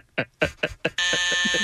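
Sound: game buzzer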